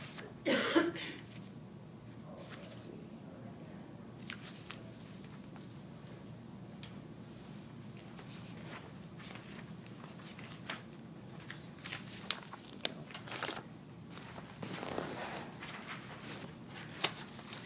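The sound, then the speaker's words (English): Paper handouts describing Holy Week services rustle and shuffle for several seconds as sheets are passed around, with scattered soft crinkles, a cough or throat-clear near the start, and faint background movement. “I want to make sure you guys at least get a PDF copy, if not a paper copy of that. So I'll pass this out.”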